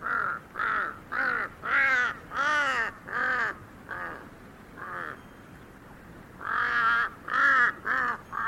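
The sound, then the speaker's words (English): A huge Tibetan crow caws repeatedly while hopping across a high field, a rapid series of harsh, croaking calls in two bursts separated by a short pause, loud with no other voices. “I remember being startled by the bizarre sounds made by a huge Tibetan crow hopping across a high field.”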